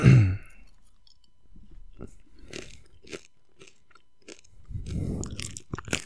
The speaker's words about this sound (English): Can you hear me chewing on these in the mic? Probably, yeah, I would imagine. If you turn it up loud enough.